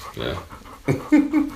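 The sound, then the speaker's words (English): A dog named T'Challa pants heavily right up against the microphone, in short breathy bursts with a low, grunting, snuffly edge to some of the breaths. “He's just like breathing in the mouth.”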